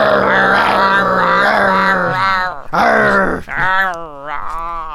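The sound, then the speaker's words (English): People growl loudly together as a sign-off for about five seconds, rough voiced snarls that rise and dip, with a couple of brief breaks and a wavering tail. “We should growl.”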